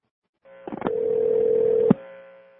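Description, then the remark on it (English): A steady electronic telephone line tone on an incoming call line in South Florida holds for about a second, preceded by a quick burst of dial-like beeps and ending with a click, with a faint hum continuing underneath. No one speaks. “Our phones, the other phones coming in. It's like, and listen to this.”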